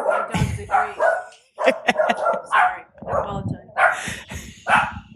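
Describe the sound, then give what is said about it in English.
A dog barks repeatedly, loud sharp barks coming in quick, uneven bursts with short pauses between them over about five seconds. “We talk about Zen and dogs bark.”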